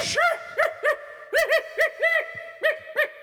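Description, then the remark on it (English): A dog, Diamond Dog from Metal Gear, barks in a quick run of about nine short, high-pitched yelps, some paired close together, fairly loud with no talking. “I got one eye, and then I got my other dog here. Uh-oh. This is my other dog.”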